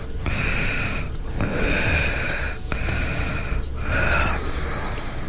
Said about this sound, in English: here's an ISO of … breathing